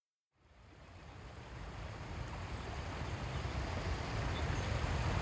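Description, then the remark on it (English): A steady, rushing wash of flowing water from the Sheboygan River fills the scene, swelling gradually louder over a few seconds with a deep rumbling low end and no voices. “Beautiful day along the Sheboygan River.”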